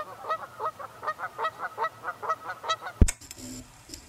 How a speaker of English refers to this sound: Number six, geese.